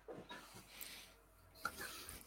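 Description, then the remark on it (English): A dog snores softly in the background, slow breathy rasps rising and falling a couple of times, faint, with no one talking. “At the moment, he's snoring away in the background.”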